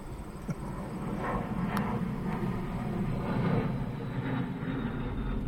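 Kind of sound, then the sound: vehicle, airplane flying overhead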